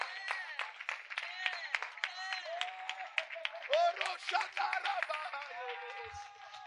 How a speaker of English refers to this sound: All of you should be clapping. Those are your children.